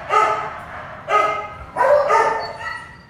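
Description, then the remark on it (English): Dogs bark loudly in the cages of an animal shelter in June 1996, recorded on a hidden DAT recorder; four or five sharp, tonal barks in uneven bursts, some running together, with a faint whine between them and no talking. “In every cage, a dog ran up to plead with him.”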